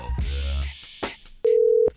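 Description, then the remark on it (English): A phone ringback tone on an outgoing call: one steady, loud electronic tone lasting about half a second, preceded by low rumbling handling noise and a few faint clicks. “All right, it's ringing.”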